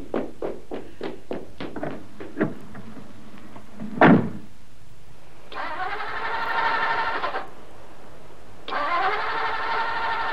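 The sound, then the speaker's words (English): A car engine cranks repeatedly without catching, its choke pulled right out: a rapid run of rhythmic turnover pulses, a heavy thump, then two longer grinding bursts of the starter that die away. No voices. “It won't start”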